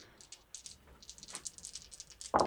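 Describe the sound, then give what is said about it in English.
A quick run of light clattering clicks and rattles as four dice are rolled across a table for dexterity and athletics checks in a tabletop role-playing game, ending with a brief louder sound as a voice cuts in. “Can you roll me dexterity and athletics?”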